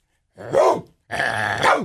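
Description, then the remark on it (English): A person vocally imitates a dog's bark: two loud, gruff bark-like calls with a short pause between them, the second longer and rougher, like a growling woof. “You bark at them like that.”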